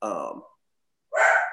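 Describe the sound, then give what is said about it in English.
Two short, loud dog barks separated by a brief pause, the second sharper and higher than the first, with no talking in between. “Got Willie Mays Haynes, my dog over here. Barking.”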